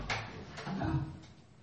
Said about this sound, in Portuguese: Minha amiga aqui abriu a porta.